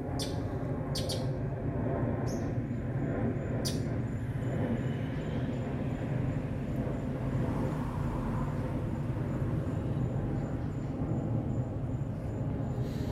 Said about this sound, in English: You hear an airplane in the distance, and you hear a few cars driving, and that's okay. Wherever you are, the sounds don't have to be perfect.